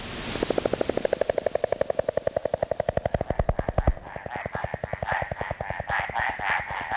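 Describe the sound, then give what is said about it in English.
Mountain tree frogs calling in the Coconino National Forest in Arizona: a loud, rapid pulsing trill rattles steadily for several seconds, then gives way to a looser series of higher, chirping croaks. “We leave you this week with the sound of a frog that keeps its head well above water.”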